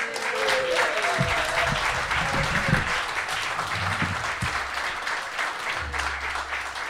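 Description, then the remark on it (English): Sustained audience applause as guest Harry Symeou, a BBC Radio London commentator, is introduced: a dense steady wash of many hands clapping at even loudness throughout, with a few whoops and low thumps mixed in and no speech. “You got to keep the applause going.”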